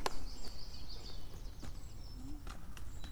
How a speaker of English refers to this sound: I can hear a woodpecker.